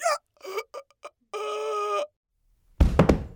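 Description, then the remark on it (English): A performer acting out a tragic death gives a few short strained, tonal vocal cries and a longer drawn-out groan, as if gasping for one final breath, then a pause before a single heavy, dull thud of his body falling to the ground. “See, as he falls to the ground, gasping for one final breath.”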